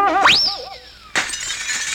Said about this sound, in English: What happened? The arrow went right through a window in your house.